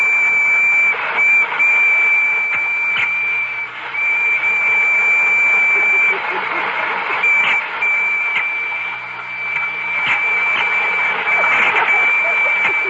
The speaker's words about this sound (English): Spangles, are the electric trains ready? Oh, I think they're all lined up. Well, start one up and let's see.